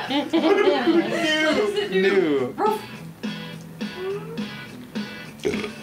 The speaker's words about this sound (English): One dog bark.